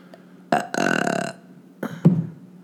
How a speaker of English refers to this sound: God damn it. You burping is not a segment on this podcast. It cannot be a segment on this podcast. I refuse to admit you're belching to this show.